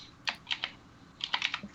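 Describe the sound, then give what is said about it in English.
Rapid clacking keystrokes on a computer keyboard, crisp, coming in two quick bursts of several taps each with a brief pause between; no voices. “God, that sounds like a typewriter.”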